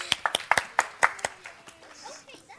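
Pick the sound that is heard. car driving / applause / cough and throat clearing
applause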